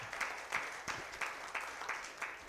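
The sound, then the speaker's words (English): An audience gives God a hand clap of praise, many hands clapping in a dense, rolling wash with rhythmic surges roughly every third of a second, sustained at moderate loudness with no voices on top. “Can you give God a hand clap of praise all over the building?”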